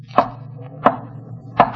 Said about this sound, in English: Did you not tell him to rap 3 times?